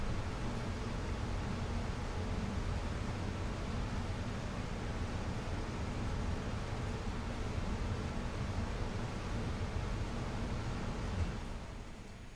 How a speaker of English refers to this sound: And that air conditioner's loud.